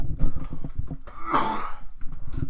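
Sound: coughing fit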